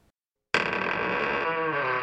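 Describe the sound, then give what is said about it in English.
After a brief silence, a loud, harsh door noise bursts in and holds steady, a strained, buzzing creak with no voices around it. “So now for a sampling of door noises.”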